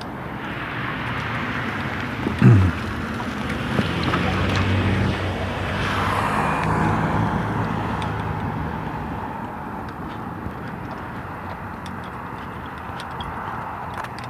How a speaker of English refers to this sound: Jet flying up there off to towards the northwest.